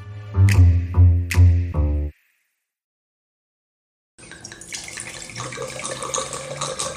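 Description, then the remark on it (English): Wine glugs from a bottle in a few quick, hollow bursts, then after a short pause streams steadily into a glass with a bright splashing hiss. No one speaks. “So how is, I see you pouring another glass.”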